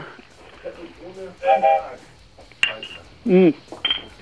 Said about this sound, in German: Genau, ich würde mal, ich würde sagen wir nochmal Prost, alle Prost. Prost. Prost. Prost. Stoßt mal an, das ist ja.